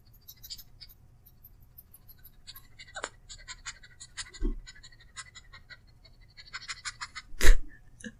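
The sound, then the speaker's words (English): Someone imitates a dog sniffing: quick, breathy nasal puffs in irregular clusters, mostly soft, with a few louder, sharper bursts scattered through. No one speaks. “Guys, I think I perfectly, imitated a dog sniffing.”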